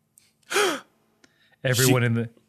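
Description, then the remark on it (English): A voice imitates a classroom full of people gasping: a short, sharp intake of breath, then a longer, louder voiced 'ooh'-like gasp, clear against a quiet background. “Everyone in the classroom gasps.”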